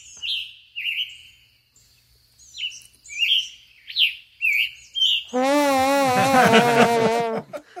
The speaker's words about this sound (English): Oh, a scarlet tanager. Yeah. Right? A scarlet tanager. You want to hear what it sounds like?